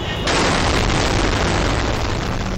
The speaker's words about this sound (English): Known as al-Qaeda in Iraq, the terrorist group conducted hundreds of suicide attacks against American and Iraqi targets in the country. Car bombs were detonated just minutes apart.